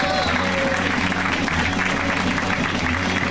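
Steady, dense applause from an audience welcoming a comedian onto a comedy show, a continuous wash of clapping that holds at an even, fairly loud level throughout, with faint crowd murmur and a low musical hum underneath.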